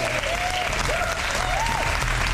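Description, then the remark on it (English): Loud, steady applause with dense clapping throughout, while a few rising and falling whoops of cheering sound over the top. “So, yeah, big cheer to her.”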